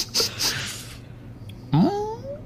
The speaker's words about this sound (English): Hold on, let me just sniff the robot again.